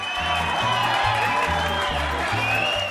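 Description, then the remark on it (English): A crowd of fans cheering, a dense and steady roar of shouts that stays loud for the whole three seconds, with a regular low thumping pulse underneath. “And the sound of our cheering fans means it's time for Bubbly Bibbly Talk.”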